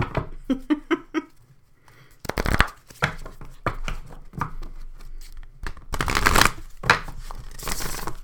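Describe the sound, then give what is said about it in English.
A deck of oracle cards being poker shuffled: a few quick soft taps, then repeated bursts of riffling and flicking, with crisp papery rustles between them, and no voices. “I totally poker shuffle these.”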